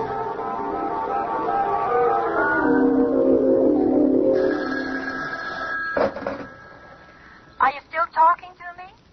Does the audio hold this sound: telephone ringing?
yes